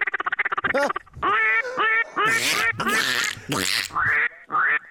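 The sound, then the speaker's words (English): A mallard duck call is blown, opening with a fast run of short quacks, then a series of loud, drawn-out nasal quacks with brief pauses between them. “I want to hear a duck call, man, from a blind this morning.”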